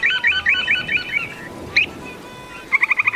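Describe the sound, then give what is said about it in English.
Purple sandpiper calls: a quick run of thin, high chirps, a lone note, then a fast burst of rapid peeps, clear over a steady wash of background noise. “So we'll move on to this week's featured feathered friend, the purple sandpiper.”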